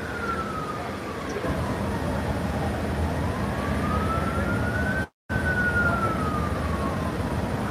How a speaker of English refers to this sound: They got an ambulance coming.